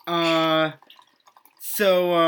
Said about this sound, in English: Sorry, my drink's pouring. It sounds like I'm... there we go. Love that sound. Love that sound.